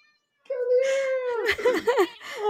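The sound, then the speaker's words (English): A shy 4-year-old, 8-pound female cat lets out a long, drawn-out meow, then breaks into a few shorter, wavering mews that rise and fall in pitch. “Davis Cat Mochi is here.”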